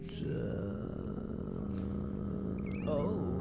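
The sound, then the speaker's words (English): A long, drawn-out burp: a low, rough, gravelly rumble that holds steady for several seconds and swells slightly louder near the end, with no talking over it. “It's like a long burp. That was a long one.”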